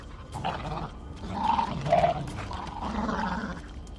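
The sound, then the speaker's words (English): Coyotes fighting, a continuous tangle of snarls and throaty growls broken by a couple of sharp, high yelps near the middle, with no talking. “Coyotes fighting.”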